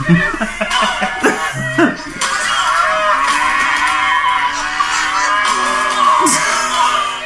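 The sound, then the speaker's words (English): Cows moo in long, low, drawn-out calls that overlap one after another against a busy, noisy background, with a few sharp thumps and bursts near the start. “It's just like cows.”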